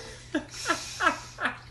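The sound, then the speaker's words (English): A dog laps up water in four steady, wet slurps, evenly spaced about a third of a second apart, each a short moderate splash with no talking over it. “And, dog drinking water.”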